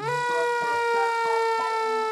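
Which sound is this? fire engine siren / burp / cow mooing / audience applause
fire engine siren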